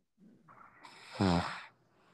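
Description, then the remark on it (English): A single loud snore from a man who fell asleep on a phone call: a breathy rasp builds for about a second, then a harsh, buzzing snort peaks and fades out. No talking is heard. “Somebody snored?”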